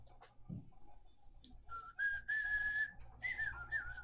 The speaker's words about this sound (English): It's a penny whistle, not a flute.